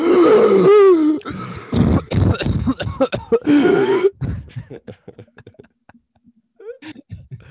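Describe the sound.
A voice imitates someone jolting awake, with loud, strained gasping and groaning bursts for about four seconds before trailing off into faint, breathy murmurs.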